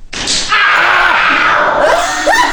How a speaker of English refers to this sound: The scream is the best part.